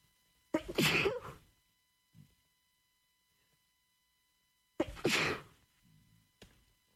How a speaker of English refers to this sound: Excuse me, sneezes never come in one.